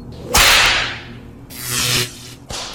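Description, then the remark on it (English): Three sharp whip cracks, each a sudden bright snap trailing into a hissing swish, the first loudest, then two more in quick succession; no one speaks. “Her clothes torn and skin reddened by the whip held in the clutches of the cruel Witch Queen Azora.”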